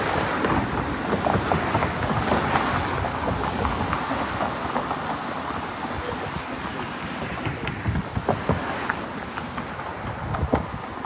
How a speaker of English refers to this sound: There's a lot of traffic out here.